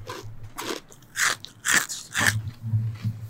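crunchy snack being chewed

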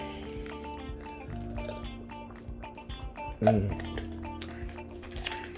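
drinking water

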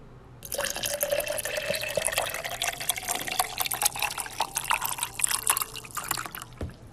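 water pouring

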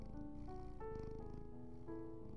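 cat purring

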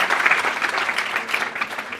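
audience clapping

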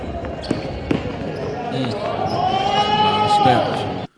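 basketball crowd cheering wildly

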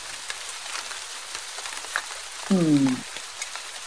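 rain falling

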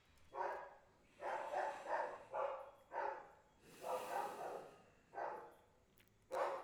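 dogs barking outside

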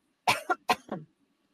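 cough

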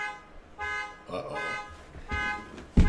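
car alarm going off

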